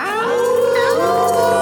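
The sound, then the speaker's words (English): Several voices howl together at the Moondog on the Moondog Show, starting on a count of three, in a loud, sustained chorus, their pitches sliding up and overlapping, filling the short moment without any speech. “All right, happy October the 8th, and we all going to howl at the Moondog on the count of three.”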